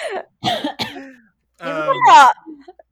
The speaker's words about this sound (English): Stop coughing. I'm sorry, I'm drinking a soda.